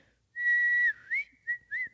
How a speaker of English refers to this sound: See how long it takes Riley to get here. I'm going to whistle for Riley. Hold on.